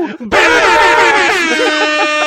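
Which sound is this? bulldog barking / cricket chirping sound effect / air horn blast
air horn blast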